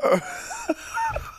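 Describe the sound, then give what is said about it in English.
A short cough bursts out, followed by a couple of brief wheezy, voiced breaths, like laughter being stifled behind the cough. “I had to cough to cover up laughter.”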